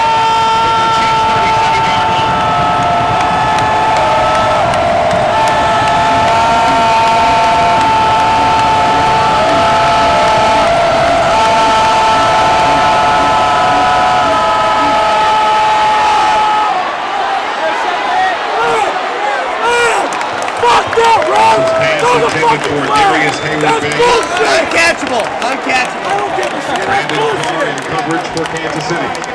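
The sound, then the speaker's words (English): A stadium crowd at Arrowhead roars during a game in a loud, continuous wash of noise that holds steady for about sixteen seconds, then turns choppier, with scattered shouts and voices breaking through. “the crowd noise at Arrowhead was crazy loud, and I'm surprised we didn't get more penalties than we got towards the end of the game, because I couldn't hear anything, and that stadium was absolutely roaring loud.”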